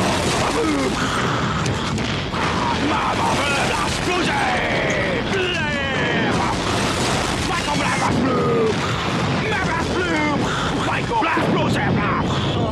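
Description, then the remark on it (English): A loud, relentless barrage of cinematic explosion effects, booms and crashing blasts layered densely for the whole stretch, with voices faintly mixed in beneath the din. “Explosions, explosions, explosions! Michael Bay presents Explosions!”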